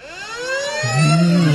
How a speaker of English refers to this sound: That was a FUBAR. It's like a police siren, isn't it? Yeah, FUBAR. Don't like that.